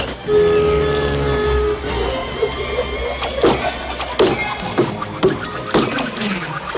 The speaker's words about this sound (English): For example, in Beauty and the Beast, Belle's dad was this inventor and he had built that funny axe chopping machine. That was a sound that we made before animation.